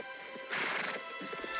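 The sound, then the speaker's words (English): Horse hooves clip-clop while a horse lets out a loud, bright neigh in the middle, a short sound-effect burst over steady background hiss. “Oh, that should have been the horse.”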